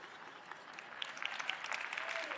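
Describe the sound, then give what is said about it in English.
Steady audience applause, a dense wash of many hands clapping that starts moderate and swells slightly louder toward the end, with no talking over it. “That's gonna get a clap.”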